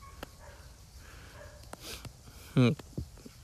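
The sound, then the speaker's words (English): A dog gives a single loud, sharp bark, followed moments later by a softer, shorter yelp, against a quiet background with faint rustling. “Oh, God, now the dog's hearing me.”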